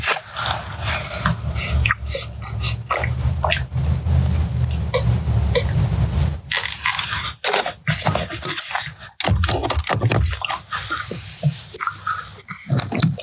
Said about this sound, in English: Take some water.